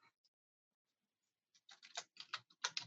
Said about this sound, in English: Still typing away.